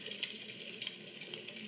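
Soft, steady bubbling of a pot in a kitchen ambience, with a watery hiss and scattered small pops at an uneven rhythm, fairly quiet, with no voices.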